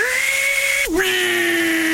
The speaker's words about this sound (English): 18-volt drill driver.